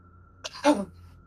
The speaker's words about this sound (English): Hold on, I got a cough.